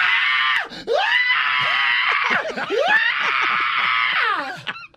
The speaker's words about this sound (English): One of her coworkers squeezes her and lifts her up off the ground while jumping up and down and screaming in her ear.